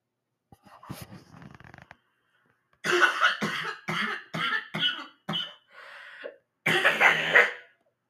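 A person coughs and clears their throat several times, a rapid series of harsh bursts followed by a longer, rougher cough, with brief quiet gaps between.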